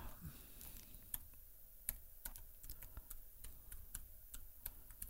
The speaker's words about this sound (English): I'm just typing.